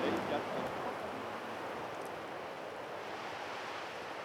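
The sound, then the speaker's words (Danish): Lazy ocean swells wash steadily against a sandy shore where a tall palm sways in a breeze, in a soft, continuous hiss of surf, fairly quiet and even, with no distinct breaks or other sounds standing out. “Dens langsomme bevægelser blander sig med havets dovne dønninger.”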